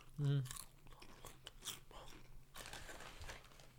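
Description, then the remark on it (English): Wet, crunchy chewing with the mouth open and smacking mouth noises, steady and fairly loud, opening with a brief voiced hum from the same person. “Close your mouth when you chew.”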